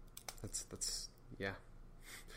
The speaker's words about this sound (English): If you hear any clicking, it's probably me fiddling with the pen, doing that, clicking it.